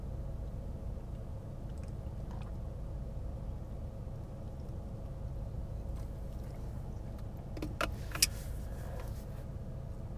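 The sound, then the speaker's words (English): A parked car idles with the air conditioning running, a steady low engine hum under a constant airy rush, broken only by a few brief clicks and rustles near the end. “Yeah, I don't know how long I've been recording now, but it feels like the car's been on for a while.”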